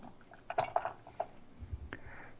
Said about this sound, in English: Our little scallions. So let's carry our chopping mat over there, which is great. You just fold up the two edges, y'all. Come right over here to the pot and dump it in.